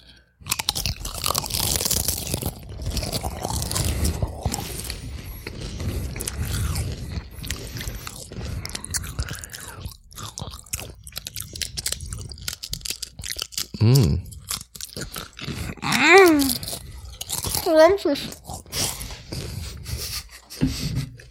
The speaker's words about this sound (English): We are now going to do this ASMR style. And we will partake in the ASMR together. So we will chomp the chips in whatever way we choose together. On three.